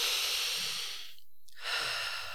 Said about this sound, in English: So just notice how you're breathing right now. Mm-hmm. Are you breathing more in? So take a moment. Take a deep breath.